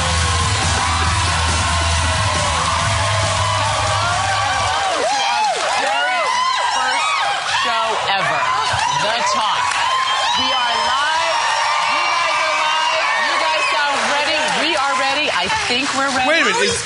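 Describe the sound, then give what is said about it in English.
A loud studio audience of the TV talk show The Talk screams, yells and whoops continuously, many overlapping high voices of excited cheering for the whole stretch, with a low rumble fading out early on. “By the way, it's called The Talk, and I haven't heard anybody talk. Just screams.”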